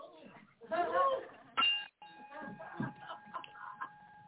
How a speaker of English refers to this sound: By popular request, hit that Liberty Bell.